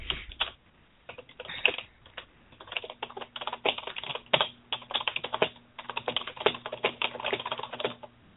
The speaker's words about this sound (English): Isn't she a loud typer? What? You're a very loud typer. Bang, bang, bang, bang. Your poor keyboard. Oh, yeah, no. he just bought a brand new keyboard, so I have his old gaming one, and mm-hmm. the keys are a lot louder when you push on them,